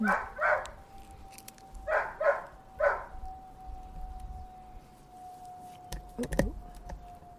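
A dog barks in two short bursts of several quick barks each over a faint steady hum, then falls quiet before some brief clattering noises near the end.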